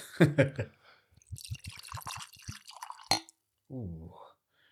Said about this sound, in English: I'm going pour. Actually, no, I'm going glug. I go glug. Last time you... Such a good sound. Such a good sound. I've been more reasonable with my pour there. That's a bit more human.